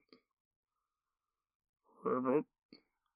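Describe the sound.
A voice imitates a frog croaking somewhere off in the distance, one short, throaty two-part croak, fairly loud, framed by faint mouth clicks before and after.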